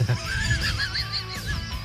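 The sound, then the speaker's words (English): A donkey brays loudly, a harsh, wavering call rising and falling for about two seconds with no talking over it. “Do you remember when the mail was delivered by donkey?”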